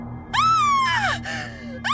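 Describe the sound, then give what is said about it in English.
A goat lets out loud, strained screams, two long harsh cries back to back with a third starting at the end, over a low steady hum. “Outside, the goat screamed with me.”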